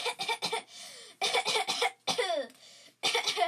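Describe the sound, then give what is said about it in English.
A harsh hacking cough from a girl due for a breathing treatment comes in several rapid fits of short, rasping bursts, with a wheezy, whistling intake between them and no talking. “Hack, cough, cough, cough.”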